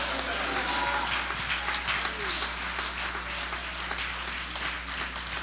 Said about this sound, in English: Stand to your feet and clap your hands and shout hallelujah.